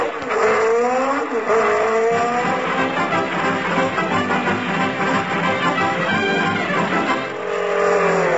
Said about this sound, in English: Hey, lady, did a jeep go past here full of soldiers and books? Yes, it turned west on Oak Street.